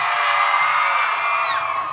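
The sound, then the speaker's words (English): A loud, sustained wave of crowd screaming and cheering, many high-pitched voices whooping together for about two seconds without letting up, as the audience responds to the idea of a Tiny Desk concert. “Okay, I'm gonna forward that scream to her people.”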